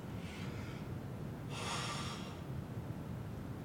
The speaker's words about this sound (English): Pardon my yawn, it's getting a little bit late.